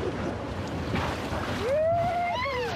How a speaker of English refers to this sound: In late August, whitewater rafters splash gleefully over boulders in the upper Klamath River. It's an awesome adventure, wet and seemingly wild.